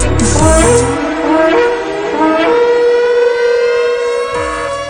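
A loud alarm siren wails alone, its tone climbing steadily in a long rising sweep, with a low rumbling burst at the start and again near the end.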